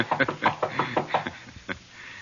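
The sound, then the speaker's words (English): Someone raps on the door of apartment 212 in a quick series of about eight sharp knocks, then pauses and gives one final knock. The knocks are moderately loud, with no talking. “Do we break in, or do I pretend I'm a gentleman and knock?”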